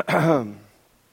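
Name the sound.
throat clearing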